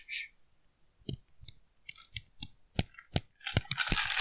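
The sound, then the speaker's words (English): Ice cubes clink against glass in a run of sharp, bright taps, sparse at first and then quickening into a dense, jangling rattle at the end. No one speaks. “Oh, that's ice cubes in glasses.”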